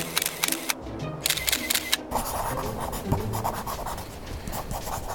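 A camera shutter clicks off a quick burst of crisp, sharp snaps, pauses briefly, then fires another rapid series before giving way to a steady rustling, scraping background noise, as pictures are taken of tornado damage in fields and towns.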